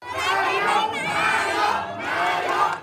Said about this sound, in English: Supporters of the Move Forward party shouted Prime Minister after a resounding victory in the Thai elections.